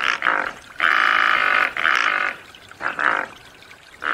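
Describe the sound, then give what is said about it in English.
A pelican gives a series of harsh, raspy grunting calls: short hoarse bursts around one long, loud, rattling call lasting nearly a second. No one speaks. “Let's hear a pelican noise right now,”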